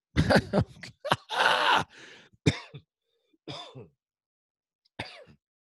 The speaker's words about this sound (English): That cough was me drinking coffee that went down the wrong way, by the way.